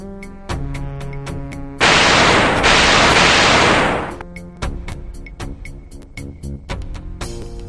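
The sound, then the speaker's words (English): Chiptune-style retro game music with sharp percussive hits, interrupted by a loud burst of noisy explosion sound lasting a couple of seconds before the beeping tune resumes. “And that little screen is going like, bass drum, explosion!”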